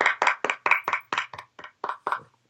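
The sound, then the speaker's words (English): A lone person clapping about ten times after a sports news segment, in a steady, fairly quick rhythm, each clap a sharp, bright smack with a short tail, no voices alongside. “Yep, only one person clapping.”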